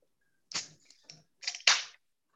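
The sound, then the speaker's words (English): A can of Busch Light beer being cracked open: a sharp metallic click with a short hiss, a couple of faint ticks, then a louder pop and fizzing burst that fades quickly. No one speaks. “Before we get into it, guys, we got a beer to crack. I got a Busch Light.”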